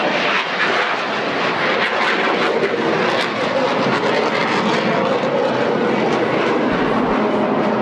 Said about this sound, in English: We got one of the Blue Angels solos doing a flyby here, a little roll, slow speed roll, gear extended.